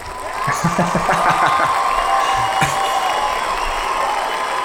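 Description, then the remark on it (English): A studio audience breaks into a round of applause mixed with cheering and a few whoops, a dense, steady roar of clapping and crowd voices that holds at an even loudness for several seconds. “So let's have a round of applause from our live studio audience, please.”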